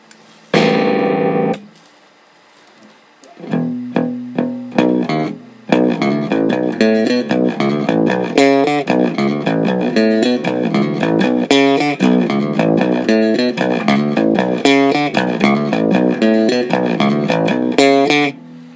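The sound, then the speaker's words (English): An electric bass guitar plugged into an amp, picked up by a phone set down near the amp, plays a busy, fiddly line of quick repeated notes in a steady rhythm, slightly distorted, after a brief opening strum and a pause. No one speaks. “And there's a bit of a fiddly bass line I'm kind of working on that goes a little something like this.”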